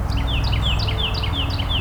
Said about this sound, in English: Hearing the triple ring of golden-crowned kinglets as well.